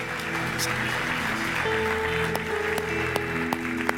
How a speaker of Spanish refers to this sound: ¿Cuántos dicen amén? ¿Podemos darle otro aplauso fuerte a Jesús?